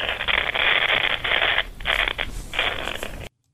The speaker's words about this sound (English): And each time there was only crackle and static at the end of the line. They seemed to be located somewhere off Lantana. I've simulated that here.